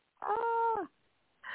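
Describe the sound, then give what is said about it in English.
A cat gives a drawn-out, tonal meow lasting over half a second, then starts another meow a moment later, with no talking over it. “Well, I'll put you on mute unless you want to have the cats speak on your behalf.”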